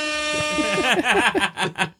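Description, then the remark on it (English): A loud, steady blast from a car's air horn with a buzzy, harmonic-rich tone holds for about a second, then excited voices exclaim over its fading end. “It's an air horn.”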